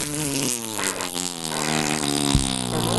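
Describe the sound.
A person blows a long, buzzy fart imitation with their mouth, a steady raspberry lasting about three seconds with a wavering pitch and no other talking.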